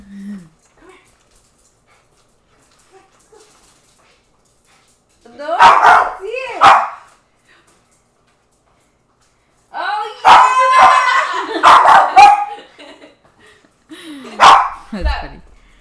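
A dog barks in several short, sharp, loud bursts, clustered in groups with quiet gaps between them, and no other sounds in between.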